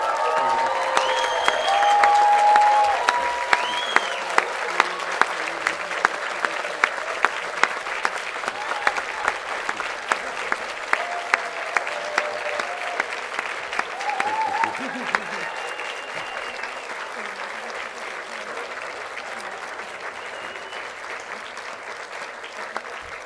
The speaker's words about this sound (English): We celebrate with you today as well, and I'd like just to ask our graduates now to rise and to express their thanks to you. So please, students, stand up, turn around, and applaud your families and friends.